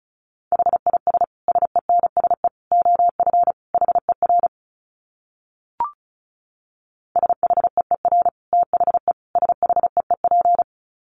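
Fast Morse code at about 35 words per minute: a steady mid-pitched beep keyed in quick dots and dashes, two runs split by a pause with a single sharp click between them.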